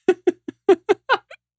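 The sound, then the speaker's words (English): A quick string of about seven short, chirpy meows from a cat, each a brief harmonic burst spaced evenly apart, fairly loud, with no talking around them. “Cat! Cat, come here! come down here, please.”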